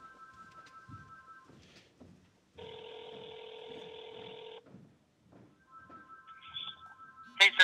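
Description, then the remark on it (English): A telephone rings with an incoming call: a steady electronic ring tone holds for about two seconds in the middle, framed by quieter beeping tones and faint background sounds, with no talking. “Oh, now we're getting a phone call.”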